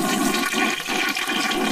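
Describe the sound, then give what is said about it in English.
A toilet flushes, a loud, steady rush of swirling water that fills the whole moment without pause, with no voices over it. “First flush of the day.”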